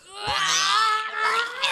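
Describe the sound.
Adults scream as loud as they can, imitating crying babies, a loud, sustained, strained scream wavering in pitch for under two seconds with no words.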